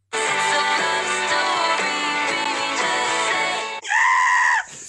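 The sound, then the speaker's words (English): A loud pop song remix plays with a steady beat, then breaks for a strained, wavering scream that sounds almost like a bleating goat before the music cuts back in. “That scream is still just, it's not good. It's really bad.”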